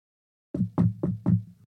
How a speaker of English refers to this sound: It was not long after we had set up camp that there was a knock at our back door.